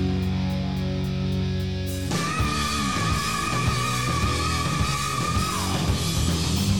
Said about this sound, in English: That's fucking thrash right there.